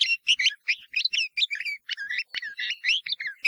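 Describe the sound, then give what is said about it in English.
A red-vented bulbul calls in a rapid run of scratchy, throaty chirps, fairly loud, the short bursts tumbling one after another with barely a pause and no voices present. “But the scratchy and throaty calls of the bulbul are not considered by many to be as melodious as those of that well-known bird.”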